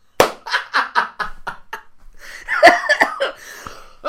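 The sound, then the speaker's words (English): A burst of several rapid coughs in a row, followed by a rougher, wheezy stretch of throat-clearing and strained breathing, with no talking. “Yeah, I coughed.”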